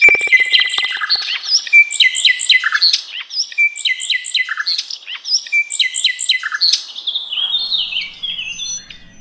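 A nightingale sings clear, delivering rapid, varied whistled phrases and trills in quick repeated bursts, with no other sounds or voices around it.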